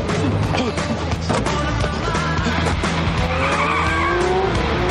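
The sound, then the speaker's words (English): The Nerd Herder car, driven by Chuck to try to stop the ambassador, roars along and then skids hard, tires squealing loudly as it brakes to a stop. The noise is continuous, with a high screech rising toward the end. “He's hopping in the Nerd Herder and he's going to try to stop the ambassador.”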